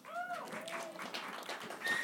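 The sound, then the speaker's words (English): Light, scattered clapping from a small live audience, a handful of uneven claps overlapping for a couple of seconds, with a brief whistle-like tone near the start, in answer to being asked who likes the TV character Disco Stew. “Show of hands or applause.”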